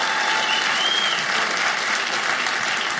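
A crowd claps steadily for about three seconds, a dense, even wash of applause that stays loud throughout, with a faint whistle rising briefly in the middle.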